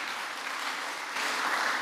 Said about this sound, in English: I said the choir was very spiritual today. From praise and worship to choir. I thought they were clapping for them.